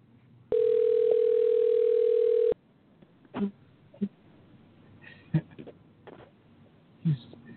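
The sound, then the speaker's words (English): A loud, steady phone dial tone holds for about two seconds, then cuts off, followed by scattered faint clicks and muffled line noises, as a call board fails to connect and a caller has to call back in. “Okay, the board is not connecting”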